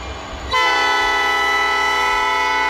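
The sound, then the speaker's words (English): A low rumble gives way to a train's horn in the town of South Suburban Dalton, which blasts suddenly and loud, holding one steady, rich chord until the end. No one speaks. “Usually the trains are the loudest noise in South Suburban Dalton.”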